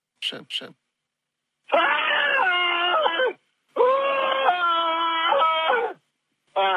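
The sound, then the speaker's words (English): A man in a voicemail, without power at home, lets out two long, loud sustained yells to keep warm, each lasting a couple of seconds, after two quick short vocal bursts, all with a thin, phone-line quality. “I'm just yelling. I find that it helps me keep warm to yell.”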